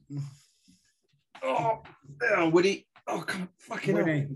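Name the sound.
dog whimpering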